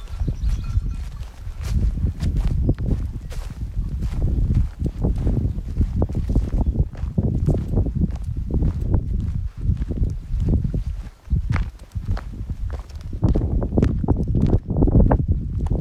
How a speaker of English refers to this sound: Goats that are blocking the road. They're right in the middle of it. I don't know how I'm gonna get through, honestly. They all have big horns.